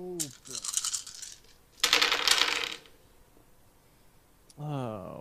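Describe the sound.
A handful of 13 dice clatters and rolls across a hard table in two rattling bursts, fairly loud, with a voice speaking briefly at the start and again at the end.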